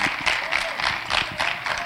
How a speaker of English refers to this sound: Let's all welcome and give a round of applause